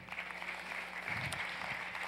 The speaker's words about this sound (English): And I've met, as you all are clapping, thank you, I've met a bunch of you all.